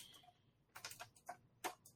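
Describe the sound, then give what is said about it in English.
A few sharp plastic clicks and rattles from someone playing with a computer keyboard holder, coming in irregular bursts against a quiet background, with no voices. “I wasn't typing. I was playing with the keyboard holder.”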